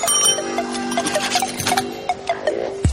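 A bright bell rings rapidly and repeatedly, its sustained metallic tones overlapping in a steady jingle that ends with a dull low thump.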